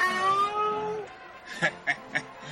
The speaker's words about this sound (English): oh my god, it's the Flophouse house cat. House cat, who are you wearing tonight?